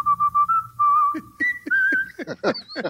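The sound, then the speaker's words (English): Someone whistles a short tune of a few clear, sustained notes, fairly loud, then the melody moves higher as sharper, choppier sounds break in toward the end. “Is that why you're always whistling”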